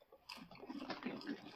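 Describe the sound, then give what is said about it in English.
Orange Cheetos-coated popcorn poured onto a plate makes a steady, crackly rustle of light pieces tumbling and landing, lasting just over a second, fairly quiet, with no voices. “I can pour some of this out to get to the Cheetos.”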